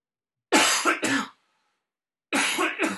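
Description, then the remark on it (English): Two bursts of harsh, raspy coughing, a short pause, then another pair of coughs; loud, with no talking. “Sorry, I don't know why I suddenly have a cough.”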